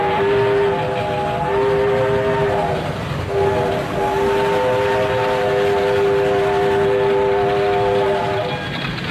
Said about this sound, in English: This is actually true. A lot of the railroads allowed their better engineers to put in their own custom steam whistles, kind of a personal calling card, so people would know when they were coming through town.